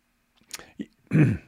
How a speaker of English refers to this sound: a bit of a cough there.